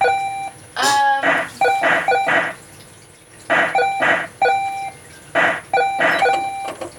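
Shooting gallery sound effects from the Coleco video game Carnival as it is played, with ducks, bunnies and owls being shot: a rising electronic chirp followed by clusters of bright, buzzy beeps in quick bursts, separated by short pauses. No one speaks.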